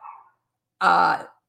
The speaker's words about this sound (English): My doggy says yes. Your doggy wants to go outside now.